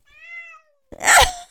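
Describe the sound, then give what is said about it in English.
A person imitates a cat, giving a short, thin, wavering meow, followed after a brief pause by a louder, harsh, breathy burst like a hiss. “We did a kitty cat.”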